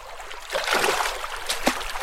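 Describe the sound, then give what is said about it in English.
A splashy slosh of water as a bare foot plunges into a shallow, ice-cold stream during a river crossing on a hike, followed by a couple of quick smaller splashes over a steady background of running water. “With my boots in one hand and the other free for balance, I take a step forward.”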